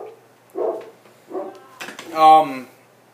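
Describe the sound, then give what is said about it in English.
A dog gives a couple of short, muffled woofs, then a louder, drawn-out bark with a whiny edge, all within a few seconds. “There's my dog, everybody.”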